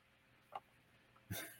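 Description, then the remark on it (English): A fat female dog makes two brief noises against a quiet hiss: a short, soft snort, then a louder, breathy woof-like huff a moment later. No one speaks. “So you got the fat dog there then. I got a background audience here.”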